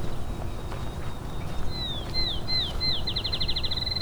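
A field sparrow, a small brown bird, sings a clear whistled series of notes that start slow and spaced, then speed up into a quick accelerating trill, heard outdoors over a low rumbling background.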